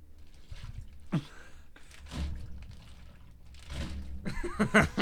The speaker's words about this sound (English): It's my ice pack.